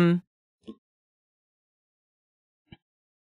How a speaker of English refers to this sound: excuse me. Bless you.